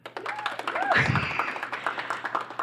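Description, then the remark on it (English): An audience claps to vote for Anka Gams in a dense, steady patter of many hands, with scattered whoops and cheers rising over the crowd noise throughout. “Okay, so if you would like to vote for Anka Gams, please clap.”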